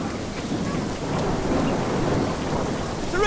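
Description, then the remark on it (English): A crowd imitates a thunderstorm: a dense, steady patter like heavy rain over a deep, rolling rumble, sustained and fairly loud throughout and swelling slightly at the very end. “So let's hear the rain. Now the thunder. Be louder. This is a serious storm.”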